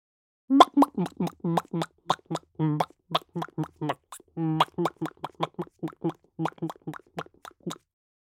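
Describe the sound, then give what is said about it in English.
A human voice imitates a resting chicken: a long run of short, soft, throaty clucks and murmurs in an uneven rhythm, steady in loudness, with no other sounds. “Chicken at rest.”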